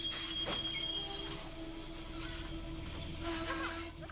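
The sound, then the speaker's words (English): Train wheels roll steadily along the tracks of an active railroad in a constant rumble, with thin metallic squeals drifting over the top and no voices. “This is an active railroad, by the way.”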